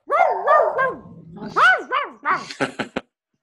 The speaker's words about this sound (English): This is crazy. Crickets and dogs. We're not going to skip this podcast. Yeah, see, I talk about animals and the dog barked.